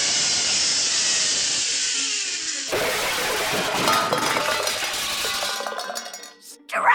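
A steady high whirring rush on a zipline bowling alley gives way to a loud crash of tin-can bowling pins knocked over, clattering and clinking with bright metallic rings that scatter and settle.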